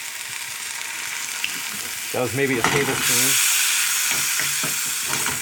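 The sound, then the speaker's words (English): Mustard greens are added to garlic already stir-frying, with a tiny splash of Shaoxing wine, giving a steady, bright sizzling hiss that surges louder partway through, while a person talks briefly over the cooking. “And then in go my mustard greens. And I'm going to add just a little tiny splash of Shaoxing wine.”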